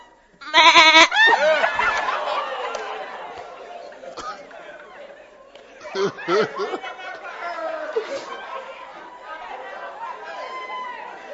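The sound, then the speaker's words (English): A goat bleats loudly near the start, a wavering cry, followed by a stretch of lively crowd chatter and some laughter that continues to the end. “And then the goat.”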